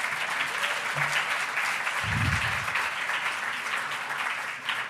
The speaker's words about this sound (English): So I'd like to give them another applause for that.